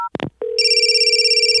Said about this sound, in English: Hey guys, 1 second, my phone's ringing.